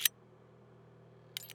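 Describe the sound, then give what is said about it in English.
Sharp metallic clicks of gunslingers in a bar reloading their revolvers bullet by bullet: one crisp click, a quiet pause over a low steady hum, then a quick pair of clicks. “The only sound is the clicking of the gunslingers reloading their revolvers, bullet by bullet.”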